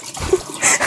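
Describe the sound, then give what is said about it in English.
A short burst of water spilling and splashing as a girl spills it over her mother, a quick watery splatter and trickle lasting under a second, with no voices. “And she's spilling it all over her mom. Luckily, it's just water.”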